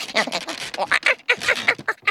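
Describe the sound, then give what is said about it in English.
A wooden top shelf creaks and strains under the weight of a climbing monkey, a run of loud, raspy, squealing groans in quick uneven bursts as it starts to break, with no voices over it. “That sounds like the shelf is breaking.”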